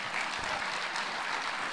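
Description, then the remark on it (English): A crowd at the Peoria County and Tazewell County Lincoln Day Dinner applauds itself with steady, dense clapping that holds at an even, fairly loud level throughout, with no voices standing out above it. “You can give yourselves a round of applause.”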